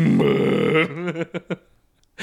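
Loud hiccuping: a long, croaky voiced gulp followed by a few short, sharp hiccups in quick succession, with no talking.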